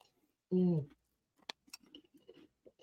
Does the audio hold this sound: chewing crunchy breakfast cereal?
yes